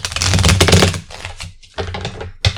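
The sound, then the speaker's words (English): Loud riffle shuffling of a deck of playing cards: a dense, rapid flutter of clicks in two bursts with a brief pause between, then a short final snap at the end. “You need me to shuffle? You shuffle those. I'll shuffle these.”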